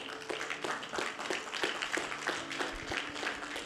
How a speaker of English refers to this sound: Go ahead, clap it up for them.